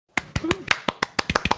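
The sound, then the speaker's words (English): A single person claps about a dozen times as thin mock applause standing in for a missing applause sound effect: sharp, bright slaps in an uneven rhythm that quickens toward the end, with a brief faint vocal sound early on. “That was a shitty applause.”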